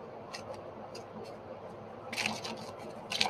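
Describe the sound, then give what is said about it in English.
Crisp papery riffles of tarot cards being shuffled for a reading for Libra, soft scattered flicks at first, then two louder flurries of rapid clicking near the end, with no talking. “I'm going to continue to shuffle. I need to shuffle these a little bit more.”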